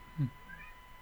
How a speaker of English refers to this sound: Sorry, this is the worst time for my cat to be meowing. Sorry if you hear my cat. No, it's fine. I love kittens. So I mean, she's amazing. Just anytime I record, she sits outside the door and screams at me.